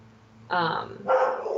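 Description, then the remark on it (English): Two loud barks from a dog, spaced about half a second apart, with low background hum and no one talking. “These dogs.”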